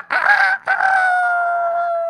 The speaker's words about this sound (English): And he slept through the night, and the rooster crowed in the morning.